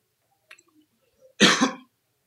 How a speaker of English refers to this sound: Excuse me, that is not a coronavirus cough.